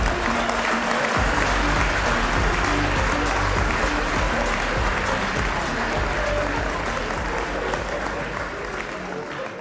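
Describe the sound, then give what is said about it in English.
A large audience claps steadily for nearly ten seconds, a dense, loud wash of applause with scattered individual claps and faint cheering mixed in, holding its volume throughout. “Until then, one last round of applause for Cicero Lucanis.”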